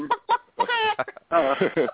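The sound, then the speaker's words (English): A cockatiel calls in a few quick, chirpy bursts with a longer warbling squawk in the middle, loud, sounding thin as if heard over a phone line. “you didn't hear the cockatiel?”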